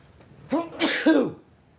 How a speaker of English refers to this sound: I gotta sneeze.